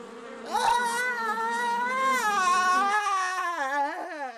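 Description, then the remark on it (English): Bees buzzing in a steady drone that wavers up and down in pitch for a few seconds, with no talking over it. “Oh my, here come some bees.”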